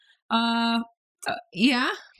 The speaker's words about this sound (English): Burps. I'll tell you all about burps.